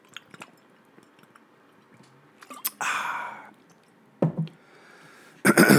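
drinking water and swallowing

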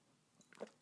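sipping wine

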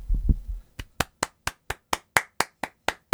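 clapping

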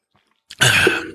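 cough and throat clearing

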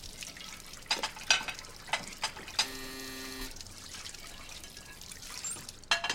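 water running

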